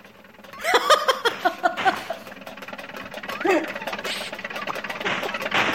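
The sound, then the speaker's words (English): A small car engine sputters to life with a quick run of rhythmic putters, then settles into a steady, buzzing drone that wavers and rises in pitch as it drives off. “Are you going to get in your little clown car now?”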